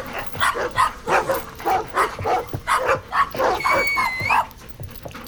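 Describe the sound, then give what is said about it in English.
Dogs bark rapidly and repeatedly, a steady flurry of loud yaps with panting and a brief high-pitched whine near the end. No one speaks. “Stop trying to kill me. Stupid dogs.”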